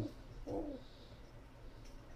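A pigeon gives a single soft, low cooing call, brief and throaty, heard faintly against a quiet background with no talking.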